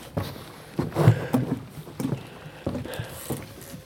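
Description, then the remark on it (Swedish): Boats tied up at a boat club marina rock with irregular hollow knocks, creaks and water sloshing against hulls, coming in uneven bursts over a faint outdoor background. “Så, då har man knutit fast här på båtklubben.”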